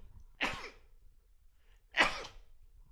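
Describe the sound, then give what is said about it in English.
Two sharp sneezes about a second and a half apart, each a sudden breathy burst that fades quickly, with quiet in between. “Excuse me, I sneezed.”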